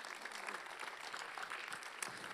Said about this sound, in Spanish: Damos ese aplauso.